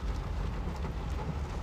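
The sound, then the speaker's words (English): A steady wash of heavy rain with a deep, continuous rumble underneath, like thunder rolling through a sudden storm with lightning, fairly loud with no voices. “This stormy weather. It was just lightning and thunder.”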